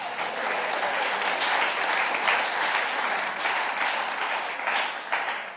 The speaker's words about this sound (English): Do give her a clap.